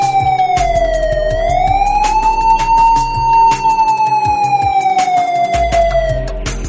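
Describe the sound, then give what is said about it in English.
Police sirens from a chase of 15 police cars, 2 motorcycles and a helicopter wail loudly and continuously, the pitch sweeping slowly up and down over a rumble of traffic, with sharp bursts of noise cutting through now and then. “The little did Harry the Polar know that only two blocks behind was the police, 15 cars, 2 motorcycles, and even a helicopter, all trying to get there.”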